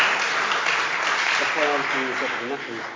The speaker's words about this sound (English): Brilliant. Let's give them a little round of applause. Thank you.